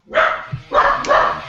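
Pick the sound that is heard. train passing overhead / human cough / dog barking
dog barking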